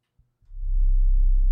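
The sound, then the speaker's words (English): A whale call recorded underwater: a deep, loud moaning tone swells in after a moment of near silence and a couple of faint thumps, then holds steady and droning with faint higher overtones. “That's a whale trying to get him some fucking pussy.”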